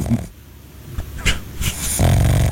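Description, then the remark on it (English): A pug snores in rough, snorting bursts while napping, the wheezy breaths repeating unevenly with no talking. “That's our pug. Oh, that's Pugcito right there. Yeah, taking a nap.”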